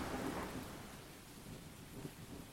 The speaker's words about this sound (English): As he continued with his experiments, the rumbling came closer, and closer, and closer. All of a sudden, kablang! Lightning strikes the house.